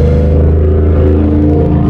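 A pickup truck engine runs with a loud, steady low rumble and droning hum, holding an even pitch throughout with no talking.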